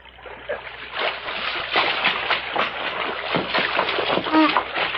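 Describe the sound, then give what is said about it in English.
Heavy, irregular splashing and sloshing of water as a shot man is pulled out of a creek, with a brief vocal sound near the end. “Help me put him out of the creek before he drowns.”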